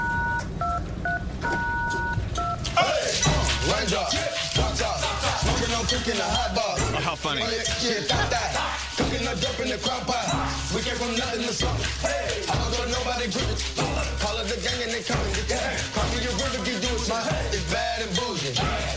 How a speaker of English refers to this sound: And instead of toy instruments, they used office supplies. So staplers, pens, keyboards, and phones.